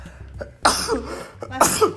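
Two sharp, breathy sneezes, one after the other about a second apart, each a sudden loud burst that quickly fades.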